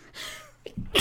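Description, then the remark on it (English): A single sharp sneeze bursts out, a breathy, hissing explosion that fades quickly, followed by a short vocal noise and a rustle. “You get one, bless you.”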